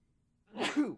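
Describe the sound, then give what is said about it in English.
A single sneeze bursts out after a moment of quiet, a sharp breathy blast with a voiced edge that trails off quickly. No one speaks. “Bless you.”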